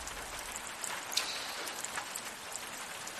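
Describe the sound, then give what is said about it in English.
Steady rain pattering down, a dense continuous hiss with scattered individual drops ticking on a surface, fairly soft and even throughout, with no voices. “That rain sounds so nice.”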